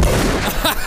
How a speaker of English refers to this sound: Gunshots.